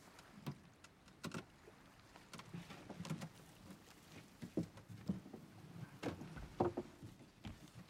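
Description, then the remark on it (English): A small boat with a person aboard rocks on water, with water lapping and sloshing against the hull and irregular wooden knocks and creaks. It is moderately loud, with no voices. “Because I'm on this boat, my final parable should be about fishing, yes?”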